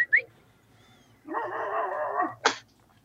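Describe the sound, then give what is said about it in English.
A dog barks alone: a couple of quick yips, then one long, drawn-out bark that almost becomes a howl, followed by a short sharp bark. “Yeah, we got a bull terrier who barks like that as well, so good.”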